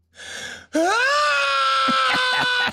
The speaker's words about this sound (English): He ran into a bathroom and screamed into a mirror like that after yelling. That's him running to the bathroom. And then he screams in the mirror. I need to get more sound effects.